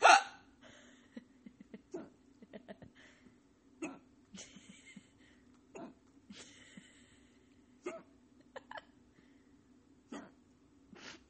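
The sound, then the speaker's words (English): Repeated sharp hiccups, about one every second or two at an uneven pace, fairly loud over a low steady hum, with brief faint breathy sounds between them. “How did you get hiccups?”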